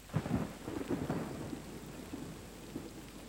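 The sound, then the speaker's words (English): Low, rolling thunder rumbles over a steady hiss of rainfall, loudest in the first second and then easing into a softer, continuous murmur with faint grumbles. “During the rain, dreams often speak louder, as if to contest with the clouds and thunder.”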